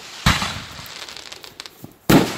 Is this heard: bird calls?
no